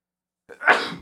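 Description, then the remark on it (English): A single loud sneeze from a person, with a short sharp intake of breath right before the explosive burst, which trails off quickly into silence. “I have to sneeze.”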